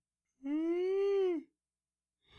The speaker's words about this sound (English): Whoa, big yawn. That was a big yawn.